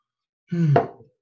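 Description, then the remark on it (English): A single swallow of water: a short throaty gurgle followed by a soft wet gulp, about half a second long, with no talking around it. “First, I'm gonna take a drink of water.”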